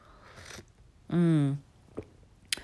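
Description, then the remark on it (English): A brief, soft slurp of someone sipping coffee on a Monday morning, followed by a short voiced hum or sigh and a couple of small clicks and swallowing sounds. “Taking a sip of my coffee real quick.”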